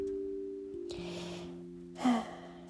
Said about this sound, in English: That was a very long paragraph. I'm going to now catch my breath because I am not breathing somehow.